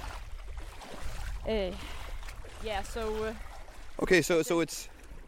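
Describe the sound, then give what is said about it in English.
Steady, continuous sloshing and swishing of shallow water as people walk through a slightly brackish freshwater lake on reflooded coastal land, with people's voices speaking over it in short bursts. “And instead of turning it all back to ocean, then they decided to make both a coastal part, which is open to the ocean, and then this freshwater lake that we're walking in now.”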